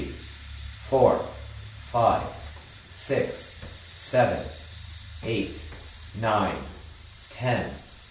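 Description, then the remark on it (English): A person takes a deep, silent breath in, then exhales in a long, steady, thin hiss that runs the whole way through, while short voiced bursts counting aloud from one upward fall about once a second over it. “So take a deep, silent breath in and hiss.”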